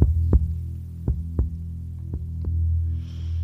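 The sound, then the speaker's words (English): Soft, muffled thumps of synchronized heartbeats, heard by someone sitting with their head leaning on a tree, land at an uneven pace over a steady low droning hum, with a faint airy hiss rising near the end. No one speaks. “I have been sitting here with my head leaning on the tree, listening to our synchronized heartbeats, wishing and hoping for only one thing: to forget.”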